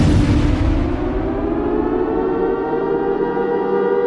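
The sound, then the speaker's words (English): Sirens wail steadily and loudly for several seconds, a sustained droning tone with a slight upward glide. A brief rumbling burst at the start fades beneath it, and no one speaks. “All right, you hear those sirens once again. That means the disaster continues.”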